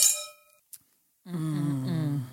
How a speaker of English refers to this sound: So Brie, I think you can do a special cheers for us. Okay, Bella Army, here is a special toast to the Bellas coming back to the podcast world.